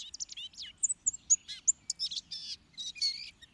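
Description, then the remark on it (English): A very small songbird, light gray-blue above and white on the breast and belly with a long slender tail, delivers a rapid, chattering warble of high, thin notes and squeaky trills, jumbled and irregular, clear with a faint low rumble underneath and no voices. “Its song is a lip-sing, chattering, incoherent warble, now faintly reminding one of the goldfinch, now of a miniature catbird, then of a tiny yellowhammer.”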